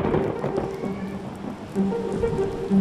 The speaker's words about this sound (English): If you live on the east coast of Australia, it may feel like the rain just hasn't stopped falling all year.